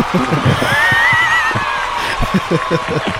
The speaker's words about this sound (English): Is that just a sound effect or is that actual applause? That's actual applause. No, that's a sound effect. It's a sound effect, man, but you deserve every bit of it, yes.